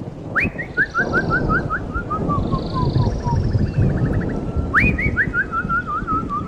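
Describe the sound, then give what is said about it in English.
A person whistles an imitation of a birdsong: two bright phrases, each a rising note followed by a quick descending run of chirpy notes, over a steady rumble of outdoor background noise. “It is definitely 100% a human.”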